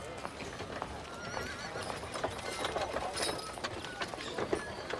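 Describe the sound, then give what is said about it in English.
Steady clip-clopping of horse hooves pulling a cart, with a horse whinnying now and then over a busy, noisy background of ambient bustle. “Yeah, so he'll, you know, spur the horses or clack the reins along, kind of take the cart up.”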